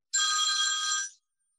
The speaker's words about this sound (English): Can you believe it? My husband's phone is in here and it's ringing. I apologize.